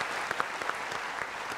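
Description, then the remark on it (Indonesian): The studio audience of the show Mata Najwa claps for civil service (CPNS) test candidates, steadily in a dense wash of applause, with a few sharper individual claps standing out, sustained at an even level for the whole stretch. “Kita kasih tepuk tangan dong pejuang CPNS nih.”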